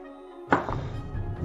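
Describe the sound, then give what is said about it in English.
Dice are rolled for a stealth roll: a sharp thunk as they hit a surface, then a brief scattered rattle and clatter as they tumble to a stop, following a low steady hum. “So I'm gonna roll me a stealth.”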